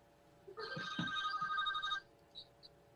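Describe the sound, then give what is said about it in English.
A telephone rings once in a steady electronic trill lasting about a second and a half, followed by a couple of faint short beeps and quiet background noise. “They blowing your phone up this morning.”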